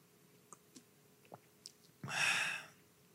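food or drink, sipping water

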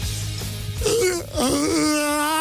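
human body sound, yawn

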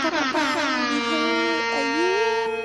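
sound effect, air horn blasts

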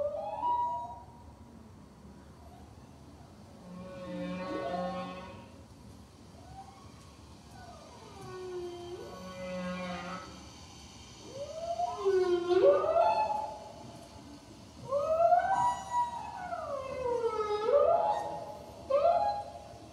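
animal, blue whale song

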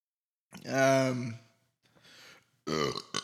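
human body sound, yawn

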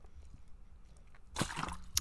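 food or drink, drinking water

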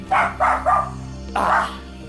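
animal, dogs barking

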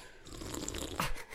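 food or drink, sipping red wine

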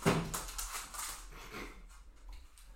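animal, dog whimpering

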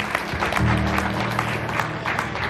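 crowd, audience clapping hands

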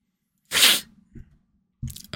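human body sound, sniffling

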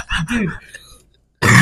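human body sound, smoker's cough

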